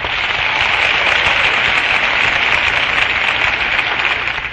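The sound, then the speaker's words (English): A radio show audience applauds and cheers for Alice Faye on the Chesterfield program, a dense wash of clapping that holds at full strength throughout before easing slightly at the very end. “And that's my cue for a cheer of our own for our Chesterfield girl, lovely Alice Faye.”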